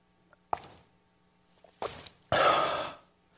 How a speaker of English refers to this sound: Oh, that was good. You know where that came from? It came from the water. You know why I drank it? Because I wanted to.